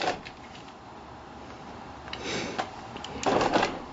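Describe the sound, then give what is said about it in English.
Paper rustles as pages of hard-copy notes are turned, with two short crinkling bursts, the second louder, over a quiet background and no talking. “I also hear pages turning.”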